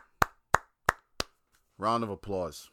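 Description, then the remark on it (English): Four sharp, evenly spaced hand claps from a single person, a slow deliberate rhythm, followed by a man speaking briefly. “Round of applause.”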